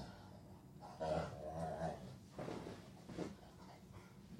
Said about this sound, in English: My dog is just on his back, like doing that, like my back scratch itches type dog thing. And he's just rawr, rawr, rawr, rawr, on top of this bed.